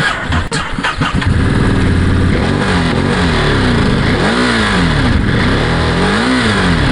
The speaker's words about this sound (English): Wow, that is a gorgeous engine sound.